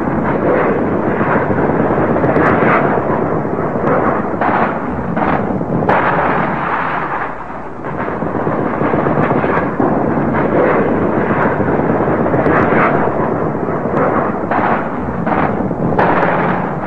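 A sustained barrage of artillery fire and bombs falling and exploding overhead among coconut palms, with dense overlapping booms and sharp bursts rolling continuously, loud and close, with no voices.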